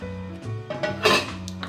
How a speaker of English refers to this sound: And then for every 1 cup of rice, you're gonna add 1.5 cups of water. That's all you need, 1.5 cups. So the ratio of rice to water is 1 to 1.5. And then I'll give it a quick stir.